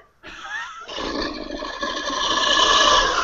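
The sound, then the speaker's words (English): A monstrous, dragon-like roar made by processing a recording of phlegm bubbling around in a throat, rough and rumbling, swelling steadily louder over a few seconds after a brief quiet start, with no talking. “So that's me just getting a little bit of phlegm in my throat and letting that bubble around a bit and sort of sounding a bit weird and then processing that.”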